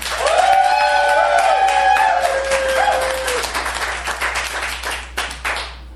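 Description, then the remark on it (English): A debate audience bursts into steady, dense applause to vote for the winner arguing for rebooting Infinite Jest, with a high sustained whoop or cheer riding over it for the first few seconds before the clapping gradually thins and fades. “If you believe the winner of this debate arguing for rebooting Infinite Jest is Jane Harrison, please applaud now.”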